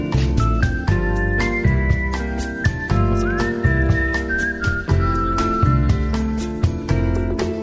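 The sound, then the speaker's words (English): A man whistles a bright, steady melody over a full band with drums, bass and guitar, the whistled notes clear and prominent above the music throughout. “Of course, he whistles.”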